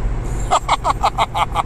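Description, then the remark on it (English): Steady low road rumble inside a moving car used as a mobile studio at about 1:55 a.m., with a quick run of seven evenly spaced pulsing tones sounding over it near the end. “And I'm coming to you live and loud from the Mobile Car Studio with today's episode.”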